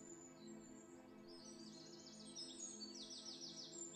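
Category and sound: bird, birds singing outdoors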